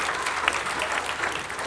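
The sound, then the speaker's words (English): An audience claps for themselves after reciting a poem, a dense wash of many hands patting at once, fairly loud and even throughout with no voices standing out. “You clap yourselves for that.”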